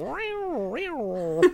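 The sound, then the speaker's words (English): A person imitates a yowling fight between two cats in heat with a drawn-out, wavering wail that rises and falls in pitch, ending in a sharp, harsh burst. Fairly loud, with no other sounds. “it would sound like two cats in heat fighting. Yeah, it sounded like a cat.”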